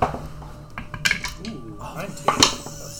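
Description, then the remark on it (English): Dice clatter across a table in a few sharp, bright clicks during a tabletop game, rolled for an athletics check in a grapple, with one burst around the middle and another near the end, while quiet voices murmur underneath. “Ooh, fuck off, dice!”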